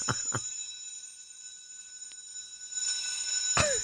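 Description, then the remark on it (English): A bell sound effect rings steadily throughout, its bright, high metallic tones sustained, with a few sharp strikes near the start and again toward the end. No one speaks. “And Steve, we're ringing a bell because you're a little crazy.”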